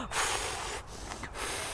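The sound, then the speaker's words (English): A voice imitates the heavy, huffing breaths a man made while playing the piano, loud: a few rough breathy bursts with short pauses between, and no words or music underneath. “Well, he tried to play the piano, but he used to do this very heavy breathing when he played the piano, and we used to take the mickey out of him.”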